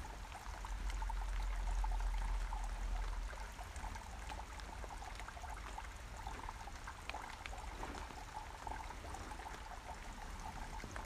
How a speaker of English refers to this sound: That running water is so nice and relaxing.